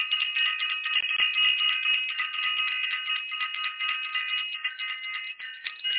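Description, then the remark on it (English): A bell rings continuously for about six seconds, a bright, high, shimmering tone held at a steady loudness with faint rapid pulsing, and no one speaking. “Gonna ring the bell for self-invested.”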